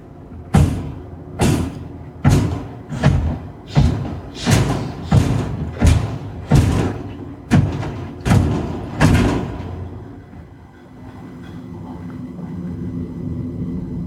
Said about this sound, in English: Couldn't even hear the squishes through your thing, but man, that's him stomping on someone dude's head.